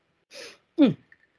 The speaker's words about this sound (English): Well, let me have a sip of my drink.